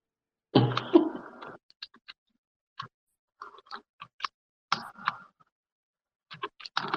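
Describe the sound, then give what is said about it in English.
Rapid computer keyboard typing: a dense, loud flurry of clacks at the start, then scattered bursts of sharp key clicks separated by short pauses, with no voices. “We got City of Smash and his keyboard going hard.”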